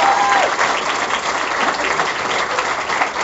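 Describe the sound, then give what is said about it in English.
Steady, loud applause from a comedy night audience clapping on request, a dense wash of many hands clapping at once that holds an even level throughout without breaking into distinct claps. “But right now, would you practice clapping for them by clapping for me as if I had been funny?”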